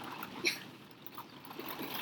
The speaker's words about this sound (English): It is raining in the studio right now, if that's what you can hear. Oh my gosh, is this going to affect our sound quality? I mean, you're going to be able to hear it, I think.